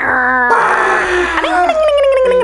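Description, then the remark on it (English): A voice imitates a moped engine with loud, buzzy droning tones that waver and slide in pitch, including a sustained whine that dips and trails downward. “So, what are your favorite moped sounds?”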